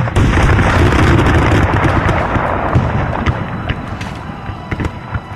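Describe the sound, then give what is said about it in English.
A single heavy cannon shot, fired by Travis at the Alamo in answer to Santa Anna's demand for surrender, erupts at the start and rolls into a long, rumbling roar that slowly fades over several seconds, loud, with no voices. “Travis answered with a cannon shot.”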